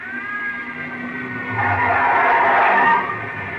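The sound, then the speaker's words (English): A car approaches with a rising engine, then tires let out a loud, sustained screech for about a second before easing off. “There's another car coming in.”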